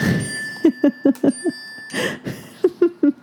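A mobile phone ringtone plays alone: a quick run of short, bright repeated notes, a brief pause, then another burst, with a thin steady high tone humming underneath.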